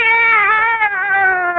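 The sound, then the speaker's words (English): A cat named Minerva lets out one long, drawn-out, loud meow, its pitch sliding slowly downward with a slight wavering quality. No one speaks over it. “Meow! Back in the bag, Minerva.”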